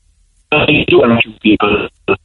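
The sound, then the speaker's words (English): A voice comes through a poor, distorted telephone line, thin and band-limited, breaking up into choppy bursts with brief dropouts so the speech is hard to make out. “It's a terrible line.”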